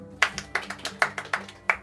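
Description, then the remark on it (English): Scattered clapping from an audience: a run of sharp, bright handclaps at an uneven pace, fairly soft overall, with no voices over it. “If you can, clap your hands.”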